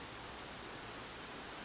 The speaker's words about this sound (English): We got some rain coming down. I love this. This is great. Hopefully it's not too flooding, though.